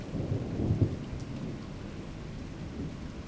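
A thunderstorm with steady rain, a deep rolling rumble of thunder swelling in the first second, then a continuous hiss of rainfall. No voices are heard.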